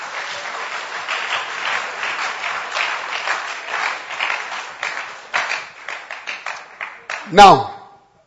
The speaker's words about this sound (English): Give the Lord a wonderful clap.